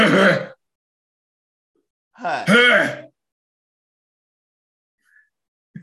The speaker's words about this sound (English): And that was a light cough. That wasn't even a cough like last.